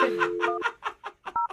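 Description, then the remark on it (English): A steady phone dial tone gives way to a quick, even run of keypad presses, about eight in under two seconds, ending on a clear two-tone beep. No one speaks. “Okay, well, let's pick up the tempo and just dial the phone number right now.”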